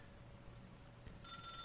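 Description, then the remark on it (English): A studio telephone starts ringing near the end, a short burst of rapid, warbling electronic trills cutting in over a low, steady room hum; no one speaks. “But I guess I should go check out what the Bat Phone has.”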